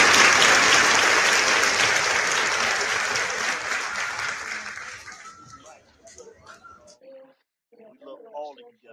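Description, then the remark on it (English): A dense round of applause from a crowd, loud at first, then thinning out over several seconds into a few scattered claps, with a voice briefly speaking near the end. “Let me give everybody a round of applause.”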